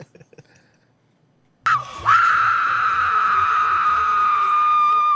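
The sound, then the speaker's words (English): After a near-silent second and a half, loud shrill screaming of people bursts in abruptly and holds steady, a sustained high-pitched wail of horror that continues unbroken to the end. “They're screaming in horror.”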